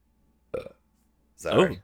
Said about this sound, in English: It's that black bush. Got that black bush in your system. Whiskey burp.